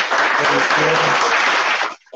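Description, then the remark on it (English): A burst of applause, dense crackling clapping at steady loudness for about two seconds, then cutting off abruptly, with faint voices mixed underneath. “You deserve a round of applause, my good sir.”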